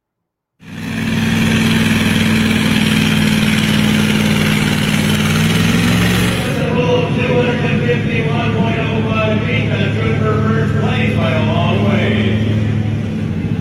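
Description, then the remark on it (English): A powerful engine at a truck and tractor pull in Centerville roars loudly and continuously, its deep low rumble steady at first and then shifting into a rougher, harsher growl with rising mechanical whine, dominating throughout. “There's a Centerville truck and tractor poll.”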